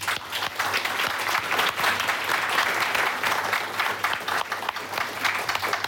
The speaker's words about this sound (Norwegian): Men gi en applaus til politikerne.